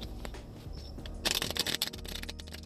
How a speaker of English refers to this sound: So, one more shuffle and let's jump right into it.